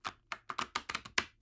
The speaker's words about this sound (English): So first thing I do when I do a tarot reading is I like to shuffle the cards. And as I do that, I ask you to let go of looking for answers and just ask for guidance.